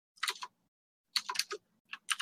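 Bursts of computer keyboard typing, several quick clacky keystrokes in short clusters with pauses between, fairly crisp, with no talking.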